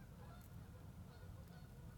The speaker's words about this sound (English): So, hear the geese?